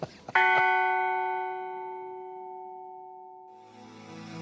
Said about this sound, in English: Awakened by a bell? Probably. Probably.